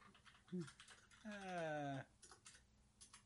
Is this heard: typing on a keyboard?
yes